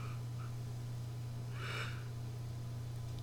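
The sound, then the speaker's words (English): One soft, breathy yawn, the second yawn during a show: a short airy exhale swelling and fading in about half a second, over a constant low electrical hum, with no talking. “This is my second yawn of the show.”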